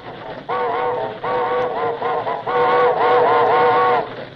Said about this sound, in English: Look up ahead! An hombre on white horse, right in the middle of the trestle! Blow the whistle! That won't do any good, but I'll do it!